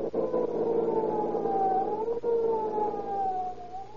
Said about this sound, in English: With a roar and siren screaming, they race through city streets to protect your lives and property.